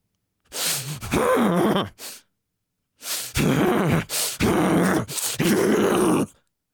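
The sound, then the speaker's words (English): A person makes a series of forceful, deep, stressful huffing breaths, called a guff huff, harsh and breathy with a groaning edge, in two bursts separated by a short pause, loud with no talking. “That kind of forced, deep, stressful breathing that shocks the body is a guff huff.”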